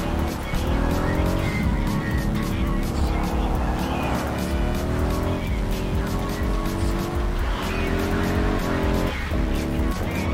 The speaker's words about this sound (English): has a sort of a racing engine in it compared to our production motorcycles. It has a dual exhaust system. And it sounds pretty. Sounds good. I could definitely blindfolded tell that's the Method 143-ish sounding motorcycle.